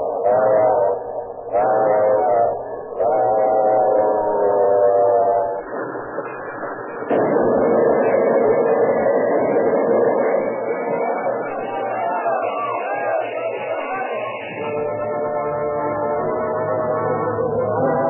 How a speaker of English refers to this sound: A piercing shot from the engine whistle split the air.